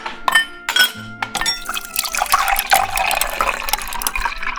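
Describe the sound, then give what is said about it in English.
Schweppes ginger ale pours steadily into a glass holding lemon juice, passion fruit and coffee, with a few sharp clinks of glass early on and a bright fizzing, gurgling fill that rises in pitch as it continues, clear and without talk. “I'll pour it for you.”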